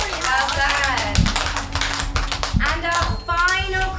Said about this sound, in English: What colour is a pumpkin? It's orange. It is indeed. Big round of applause.